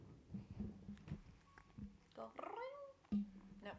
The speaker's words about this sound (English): Can you give us a meow?